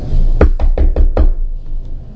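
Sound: knocking on a door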